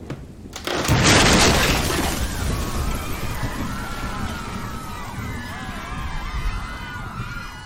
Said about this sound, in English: As they were carting him away, the roof of the Red Pig got ripped off.